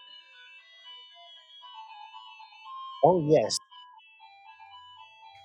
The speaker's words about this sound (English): That is a hell of a doorbell. It's like a disco doorbell. My goodness.